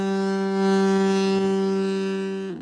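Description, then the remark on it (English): A car horn held down in one long, steady blast for about two and a half seconds, loud and brassy with a constant pitch, then cut off abruptly. “But in actuality, it sounds like you're laying on a horn.”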